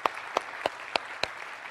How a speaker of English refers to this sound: Over 100 volunteers it took to pull that off, and you guys stepped up and made it happen. Way to go, Edinburgh. Can we give our volunteers just a round of applause?